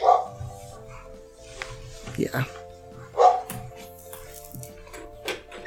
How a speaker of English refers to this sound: The neighbor's dog barks at air.